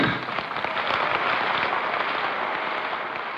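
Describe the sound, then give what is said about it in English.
A large crowd applauding in a congressional chamber during a joint session of Congress on January 8, 1964, rising to applaud President Lyndon Baines Johnson as he makes his way through the crowd before his State of the Union address; a dense, steady roar of many hands clapping that holds an even loudness throughout, with no voices heard. “They all rise to applaud President Lyndon Baines Johnson as he makes his way through the crowd.”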